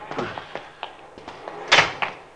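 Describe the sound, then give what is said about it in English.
A Cadillac's door is forced open in a nearly empty parking lot after 10:30 at night: a run of sharp metallic clicks and knocks builds to one louder, rattling bang near the end, with no voices. “He's forcing the door.”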